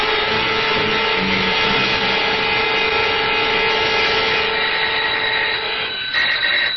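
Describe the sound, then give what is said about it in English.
A loud doorbell rings as one long, unbroken electric buzz. It holds steady and harsh for several seconds with no voices, then wavers slightly near the end. “That's him. The ring of authority. Are you going to answer it?”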